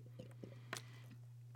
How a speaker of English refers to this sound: Listen, let me take a swig of this delicious Poland Springs water that I'm sipping on right now.